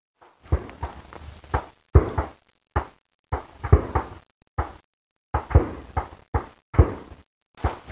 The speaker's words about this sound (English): Can you hear it? Gunshots. So here you are walking in this beautiful little manzanita forest, peaceful little place, and then you see high-power rifles popping off in the distance.